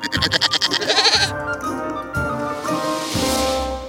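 A goat bleats loudly, a quavering, stuttering cry followed by a few longer drawn-out bleats, with no talking around it.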